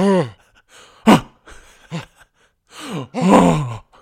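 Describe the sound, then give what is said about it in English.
A person in the adjacent toilet cubicle lets out several husky, breathy gasps and groaning exhalations, in uneven bursts with short silences between, ending in a longer strained breath. “A husky gasp was heard from the throne next door.”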